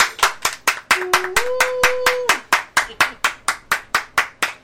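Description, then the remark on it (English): A group claps together in a steady, fast rhythm, roughly four sharp claps per second and about twenty in all, while a brief held vocal note sounds partway through. “Oh, let's clap it up, y'all.”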